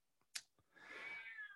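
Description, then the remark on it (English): A pet cat lets out one drawn-out, whining meow, rising and holding for nearly a second after a couple of faint taps. No one speaks. “My cat is here.”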